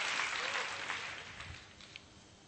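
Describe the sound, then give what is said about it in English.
A crowd at a bilingual English-Chinese Christian service applauds together, giving a clap to the Lord, a dense wash of many hands clapping, steady at first and gradually thinning out toward the end. “Come, let's give Lord a clap, shall we?”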